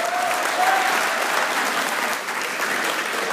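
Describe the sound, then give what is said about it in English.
A crowd claps for a blood drive, steadily, in a dense, sustained wash of applause, loud and even throughout, with a few faint cheers or whistles mixed in and no talking. “Well, a little quick round of applause for the blood drive here.”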